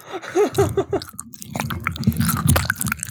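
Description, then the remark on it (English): Wet ASMR chewing right up against a microphone, with loud smacking, squelching mouth noises and bursts of crunchy clicks following one another in an uneven rhythm. “I guarantee you he would not have a problem to stop your chewing.”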